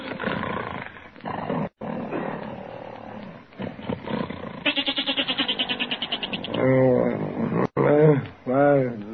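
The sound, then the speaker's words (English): A goat bleats repeatedly, with one long, rapidly quavering bleat followed by several shorter, wavering baas, loud, after a stretch of rough, busy noise. “Oh, listen to that goat, Peg. He's been baaing all night.”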